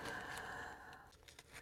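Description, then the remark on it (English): A tarot card deck being shuffled: a soft, papery riffle and rustle with a few quick flicks and slaps near the end, fairly quiet, with no voices. “And I'm probably shuffling it too much.”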